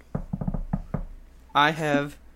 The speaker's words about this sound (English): Knock on wood.